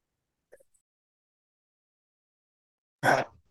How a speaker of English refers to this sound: Sorry, I just sneezed.